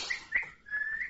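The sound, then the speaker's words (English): A person whistles a few short, bright tones, ending on a longer sustained note, fairly quiet with no talking. “Is he whistling at her?”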